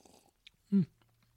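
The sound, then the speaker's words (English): Quiet wet mouth noises of someone taking a tiny sip of a spirit and swishing it around the mouth to prime the palate before tasting, with one brief, louder throaty sound in the middle and no talking. “Take a tiny sip, just a tiny sip. Put it around your mouth.”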